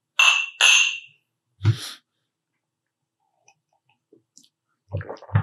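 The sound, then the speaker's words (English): Two bright, ringing clinks of crystal glasses in a toast, in quick succession, each with a high shimmering tone that fades, followed by a dull knock and a few faint taps. “So, well, cheers, guys. Cheers.”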